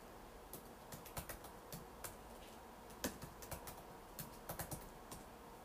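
Keys clatter on a computer keyboard in irregular bursts of quick taps with brief pauses, close and fairly quiet against a faint background hiss, with no talking.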